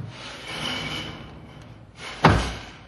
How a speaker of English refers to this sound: Junior closed the door quietly.